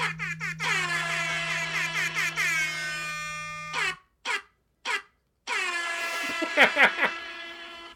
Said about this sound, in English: Well, as the sound of that air horn and that dial-up modem indicate, there was a Natty B in this issue.